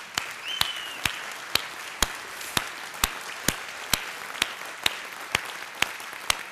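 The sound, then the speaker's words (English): An audience stands and applauds to honor a group of people for their ministry, in a steady wash of clapping, with sharp, evenly spaced claps about twice a second standing out. No one speaks. “If you feel comfortable, would you just stand and just applaud them?”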